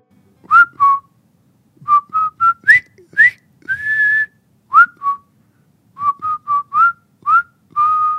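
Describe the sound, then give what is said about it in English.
A whistled march tune known from David Lean's film The Bridge on the River Kwai, bright clipped notes in a bouncy rhythm with one longer held note mid-phrase, a few short pauses between phrases, clear and fairly loud with no talking. “When you hear this tune, what instantly springs to mind is David Lean's award-winning movie, The Bridge on the River Kwai.”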